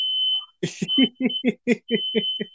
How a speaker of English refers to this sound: And there goes my smoke alarm for some weird reason.